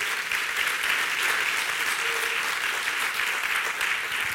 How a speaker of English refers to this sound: Well, there's a good place to clap for the Lord.